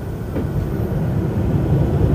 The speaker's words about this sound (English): Landing gear just went down. Some air brakes just took us from 800 miles an hour to probably, I don't know, probably 300, 400 miles an hour right now, I assume. This is fucking outrageous how fast we were going earlier.